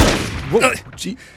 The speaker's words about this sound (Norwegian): Det ender opp med at et skudd av fyres.